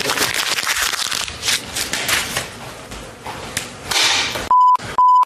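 A rapid, irregular run of sharp hammering knocks and clattering impacts, followed at the very end by two loud, steady electronic beeps.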